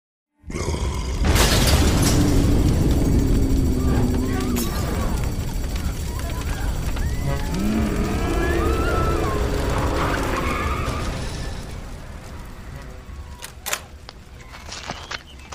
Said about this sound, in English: You should experience lots of explosions with no body parts and a couple of swears.